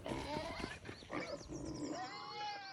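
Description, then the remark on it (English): Frantic high-pitched squeals and grunting snorts from several panicked pigs overlap in a continuous, agitated burst, loud, with no pause for the whole stretch. “circling, peachy pink panic, squealing and oinking uncontrollably.”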